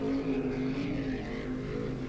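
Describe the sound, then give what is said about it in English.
A speedboat engine buzzes steadily as the boat careens down a canal, a loud droning motor with a low harmonic whine and a slightly wavering pitch, holding at an even level throughout with no voices. “But just as Harry was contemplating his next move, he heard a buzzing noise coming from further down the canal.”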